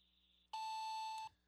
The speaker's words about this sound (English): you'll hear a beep. After that beep, feel free to leave